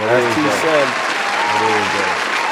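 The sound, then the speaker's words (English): Loud, steady applause for Club Shay Shay runs through the whole clip, a dense wash of clapping, while a man's voice talks over it in short bursts. “We got to clap it up for Club Shay Shay.”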